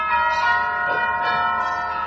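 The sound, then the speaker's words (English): A new set of church bells in a church down the block rings out steadily, their rich overlapping tones sustaining and blending into a continuous resonant peal, with no voices present. “that's the new set of bells in the church down the block.”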